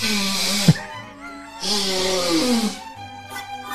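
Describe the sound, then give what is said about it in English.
Someone blows their nose in two long, loud honking bursts, each a breathy rasp with a buzzy, tonal edge that slides down in pitch, followed by a fainter snuffle. “The part where I blow my nose while you feel time.”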